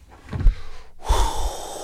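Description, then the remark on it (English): A voice imitates a forceful martial arts breathing exercise: a short sharp intake, a brief pause, then a long, loud, hissing exhale. “All that breathing and fucking”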